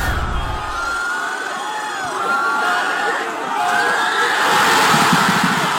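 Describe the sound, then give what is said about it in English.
A large crowd of fans at King George Square roars and cheers after Sam Kerr scored a goal, a sustained wash of screams and shouts that swells louder toward the end, with whoops rising above the din. “But this is last night, the fans at King George Square after Sam Kerr scored.”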